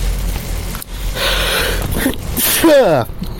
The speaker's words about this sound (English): Excuse me, I sneezed.